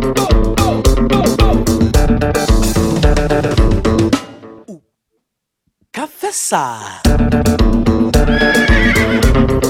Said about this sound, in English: That horse is crazy.